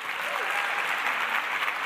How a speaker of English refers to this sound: So please join me and let's get our clapping into formation to welcome to the stage